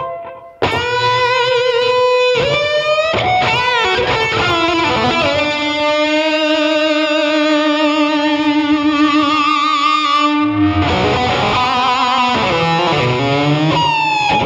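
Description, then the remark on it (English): A screaming high-gain rock distortion tone plays loud and alone, sustaining thick, buzzy notes with bending pitches and a brief break near the end before more wailing phrases. “And then the screaming rock thing kind of sounds like this.”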